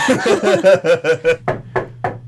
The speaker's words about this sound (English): What could that be, ladies and gentlemen? A knock at the door at this hour.